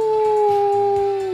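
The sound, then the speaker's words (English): A person imitates a wolf howl, holding one steady, sustained note for over a second, with faint background noise beneath it. “Anyway, I really practiced my wolf sound. Let's give that a go.”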